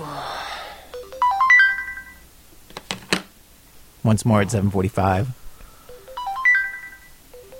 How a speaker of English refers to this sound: a grad student, hears the alarm that's supposed to wake him up, and he shuts it off. This happens again at 7:35, and again at 7:40.